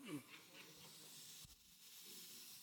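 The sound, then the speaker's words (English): A steak sizzles in a pan, a steady, soft crackling hiss that continues throughout at low volume, with a brief dull knock about halfway through. “You hear the sizzle a little bit?”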